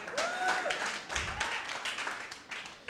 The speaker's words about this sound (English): They're two pastors. A guy called Carl Lenz. Okay, clap.